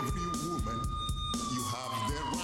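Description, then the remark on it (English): A police siren wails with a high, steady tone that slowly slides downward partway through, while people talk over it the whole time. “Like, I didn't know the sirens were in real life.”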